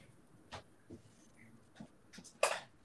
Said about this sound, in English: I'm going to draw kind of a spiral shape starting in the middle and just working my way out toward the edges.